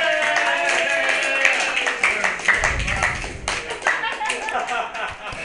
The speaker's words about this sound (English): See, even little mama right there clapping. Clap, baby. Clap.